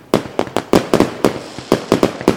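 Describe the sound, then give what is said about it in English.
A rapid, irregular string of about ten loud, sharp fireworks bangs and pops, a New Year fireworks sound effect added in, each bursting with a brief crackling tail, with no voices. “Pretend fireworks. Can we add in pretend fireworks in the background?”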